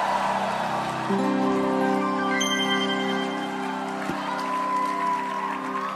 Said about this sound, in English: Clap your hands for Jesus. Daddy is here with us. I want to hear a shout. Let's welcome him.